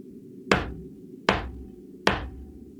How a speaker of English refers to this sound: A knocking at the door.